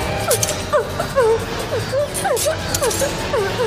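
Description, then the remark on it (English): Repeated metallic scraping and screeching of butter knives dragged across a metal pipe by Freddy, a Foley sound effect, with short rising and falling squeals in an irregular rhythm over a steady rumbling background. “Yeah, and he's a bit, but what's weird is he's dragging them across a metal pipe, so there should be like a that.”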